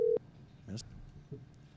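A brief, steady telephone tone sounds at the start and cuts off quickly as a call is placed live on a radio show, followed by faint background noise and a few soft, indistinct sounds, as on an outgoing call line.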